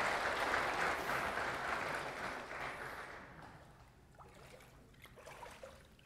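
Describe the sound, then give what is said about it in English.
A crowd applauds in a dense, steady wash of clapping that holds for a few seconds, then thins out and fades to scattered claps and faint background noise. “This minute, we're going to get another round of applause for you.”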